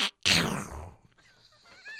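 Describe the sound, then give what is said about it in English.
A voice imitates Donald Duck sneezing: a quick sharp intake, then one loud, raspy, explosive burst that fades within a second, trailed by faint squeaky vocal noises. “That's Donald Duck sneezing.”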